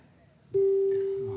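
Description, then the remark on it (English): A quiz show time-up signal cuts in abruptly as one loud, steady, mid-low tone that holds unbroken for about a second, with faint voices murmuring before and beneath it. “As Archie Mayo would say, the bell is tolled.”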